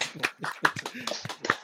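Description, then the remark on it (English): A short burst of hand clapping from a few people celebrating a colleague's promotion to CFO, quick irregular claps overlapping, moderately loud, with no talking. “Round of applause, guys.”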